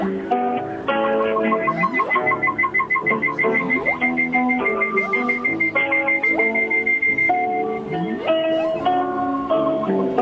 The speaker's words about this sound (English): The humpback whales are wailing.